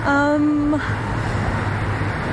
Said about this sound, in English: The traffic's a little bit monotonous, so let's go back into the wilderness.